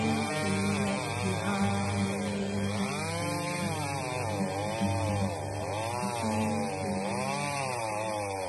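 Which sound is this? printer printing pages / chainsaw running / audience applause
chainsaw running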